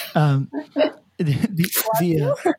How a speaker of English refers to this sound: oh God, somebody just sneezed.